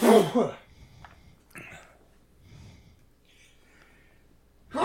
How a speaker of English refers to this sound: Bless you.